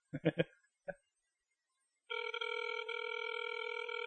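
A phone ringback tone sounds on an outgoing call: a steady electronic purr lasting about two seconds, clear and fairly loud, after a few brief, choppy sounds at the start.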